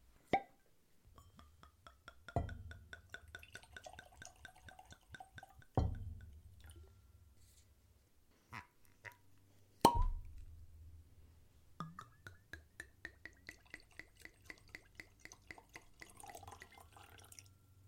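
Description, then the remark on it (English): ASW Duality Double Malt Whiskey glugs from a bottle into glasses in a couple of steady pours, the tone rising as each glass fills, punctuated by a few sharp clinks of glass. No talking. “So enough talking, let's get these poured and jump right in.”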